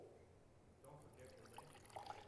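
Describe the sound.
Water pours steadily into jars, a continuous splashing gurgle with a few bright plinks as they fill, while voices murmur faintly in the background.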